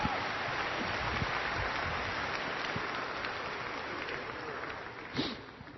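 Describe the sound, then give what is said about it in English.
A crowd claps steadily for several seconds, a dense, even patter of many hands with no pauses. Near the end one louder, sharper clap or thump stands out before the applause thins. “Give sin and good a round of applause.”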